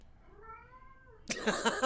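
A single drawn-out cat meow at the start of a film trailer, fairly soft and clear, that rises and then trails off before a sudden burst of loud, dense noise cuts in and takes over.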